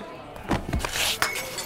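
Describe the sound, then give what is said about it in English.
A drinking glass clinks and then shatters, a bright, crackling burst of breaking glass with a sharp second impact near the end, over a murmur of background voices. “You broke my glass.”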